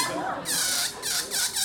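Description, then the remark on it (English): High, whiny squeals from a balloon slowly letting out air, wavering in pitch across several short back-to-back bursts, fairly loud. “Because they just let it out slowly, one little squeak at a time until you're just like, I can't handle it anymore, right?”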